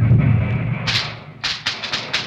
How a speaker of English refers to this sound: What's that? The fireworks. The fireworks. Get them all out, boys.